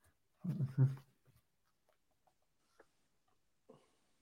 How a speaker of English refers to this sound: Bear with, guys. I'm not typing. I'm a pen and paper type of guy.